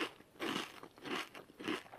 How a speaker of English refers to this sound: the noise made from the dude grubbing on his hand sounded like, now wait for this, he said it sounded, quote, like someone chewing a Dorito, a freaking Dorito.